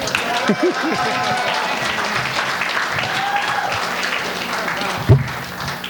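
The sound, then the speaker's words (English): A comedy audience applauds a comedian steadily and loudly for about six seconds, a dense wash of clapping with a few voices whooping and calling out over it. “How about it for Mr. Rossi, everybody? Give it up for him.”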